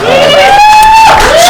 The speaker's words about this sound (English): That applause was all that for him. That just worked. We actually paid them to do that.